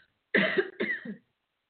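A person clears their throat with two quick rasping coughs back to back, loud and gravelly, followed by silence with no talking.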